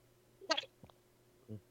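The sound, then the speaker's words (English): A single quick sneeze bursts out, sharp and fairly loud, followed by a faint click and a brief low murmur. “Bless you.”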